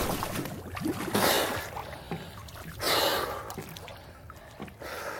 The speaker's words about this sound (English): So on they swam, into the hole in the ship until they found themselves popping up out of the water, gasping for air.